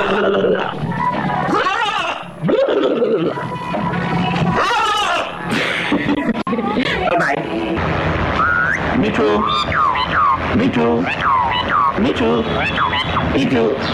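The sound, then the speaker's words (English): Birdsong run through a frequency shifter, its chirps and trills turned into swooping, metallic, siren-like glides that bend up and down in pitch, dense and continuous with a gritty, warbling texture throughout. “We're back to the birds. So here's the frequency shifter.”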